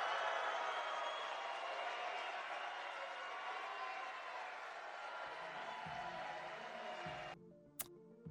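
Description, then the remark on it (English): A large crowd cheers and applauds Donald J. Trump announcing his candidacy for President of the United States at Mar-a-Lago, in a dense, steady roar that holds for about seven seconds before abruptly cutting away, leaving a brief quieter tail. “And the crowd goes wild.”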